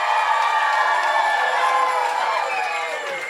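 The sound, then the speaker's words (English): A large audience cheers and applauds loudly and steadily for Cristela Alonzo, with whoops and high shouts rising over a dense wash of clapping that stays strong throughout. “Give it up for Cristela Alonzo.”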